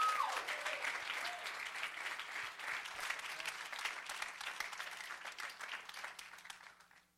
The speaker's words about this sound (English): Let's give them a great hand clap of praise. Hallelujah. Thank you, Jesus. Thank you, Jesus. We love you. Let's give them another hand clap.